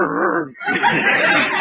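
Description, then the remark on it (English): A man's voice imitates a dog, producing a short growly yelp followed by a longer rough, whining bark-like sound, fairly loud, with no other talk. “you're even getting to sound like a dog.”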